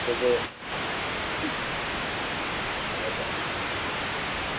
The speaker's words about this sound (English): Keep getting all this static energy. I know, I hear it too. I don't know what it is. Are you breathing heavy, girl? No. I'm calling from a Magic Jack phone, and I don't know, sometimes it screws up on me.